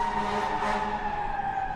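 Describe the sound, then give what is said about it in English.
A fire truck siren wails steadily as fire trucks go by, its sustained tone droning over the rumble of traffic for the whole short stretch, with no voices. “With these fire trucks stop going by.”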